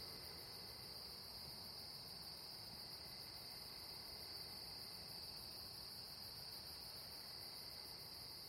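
night insects chirping outdoors

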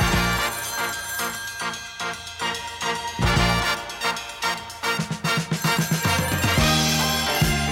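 telephone bell ringing

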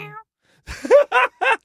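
cat meowing

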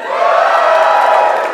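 audience cheering

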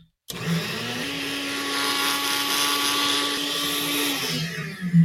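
blender running

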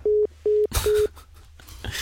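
telephone busy tone

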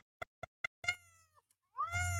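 cat meowing

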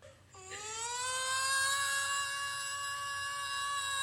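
alarm siren sound effect

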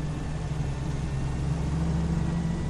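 car interior engine hum

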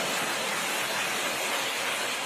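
flowing creek water

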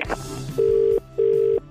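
telephone dialing and ringing

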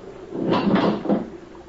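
door being opened

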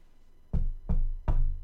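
knocking on a door

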